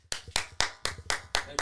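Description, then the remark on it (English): A single person claps their hands in a steady rhythm to welcome a guest, seven sharp claps spaced about a quarter second apart, with no other sounds around them. “I'm the only one clapping, but hopefully you're clapping at home too.”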